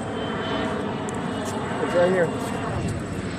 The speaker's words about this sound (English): Is there another fucking airplane? Yeah. We're in a busy town now.